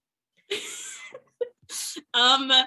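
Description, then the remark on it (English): A dry coughing fit: a few harsh, breathy bursts separated by short pauses, ending in a strained, voiced throat clearing. No other sounds accompany it. “There is my attack of opportunity. It's similar to a coughing attack or a coughing attack at the moment when you're supposed to come up with the answer and you don't know it.”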